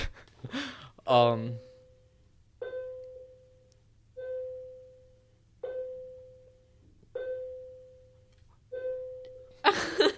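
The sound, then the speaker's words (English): A bell tolls five times at a steady, unhurried pace, each mid-pitched strike ringing out and lingering before the next. Brief voices come just before the first toll and after the last. “They heard we were filming today, so they wanted to send out an extra long bell.”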